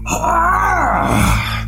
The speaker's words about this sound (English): As you finish moving, you hear the Mer Warrior scream from down the hallway.